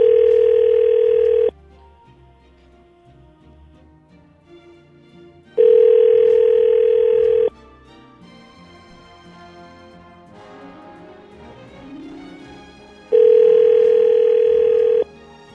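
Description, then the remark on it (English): A call being placed to a woman by radio hosts: a loud, steady telephone tone sounds in three long bursts with several seconds of quieter gap between them, where faint background sound continues. “All right, we're going to get her on the phone.”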